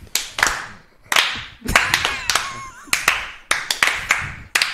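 Several people at a party clap slowly together in a loose, slightly uneven rhythm, each sharp clap ringing out before the next, with a faint voice briefly audible midway.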